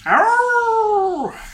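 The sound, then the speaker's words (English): A new puppy lets out a single drawn-out whimper, a high, steady whine that rises at the start and drops away at the end. It is fairly loud, with no talking. “I've been up all night because we've got a new puppy.”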